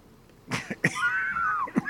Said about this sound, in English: Matter of fact, I was going to run out a couple of seconds and cough. So there you go.